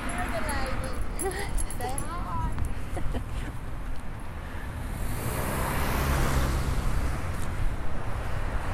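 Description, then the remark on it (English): A dog lets out a few short, high whimpering yelps in the first few seconds, over a steady wash of road traffic that swells toward the end. “Anyway, hey puppy.”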